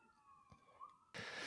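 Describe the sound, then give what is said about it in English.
An emergency vehicle siren wails at moderate volume, its tone holding then rising slightly, before a sudden loud burst of rushing noise takes over at the end. “I'll remember this year perfectly as timed sirens.”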